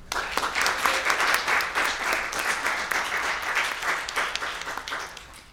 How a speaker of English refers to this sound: And lastly, I think we should thank you guys. Round of applause, so please applaud yourself for being such a wonderful audience today.